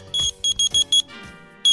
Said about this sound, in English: That was Morse code. What's that Morse code for?